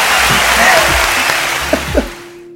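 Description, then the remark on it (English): A short burst of dense, steady applause from a group, loud, fading out abruptly near the end, with a few faint voices mixed into the clapping. “Clap it up.”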